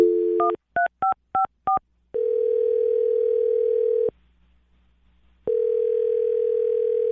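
A dial tone gives way to four quick touch-tone beeps, then two long, steady ringback tones separated by a pause of silence. The phone sounds are close and clear, with no voices.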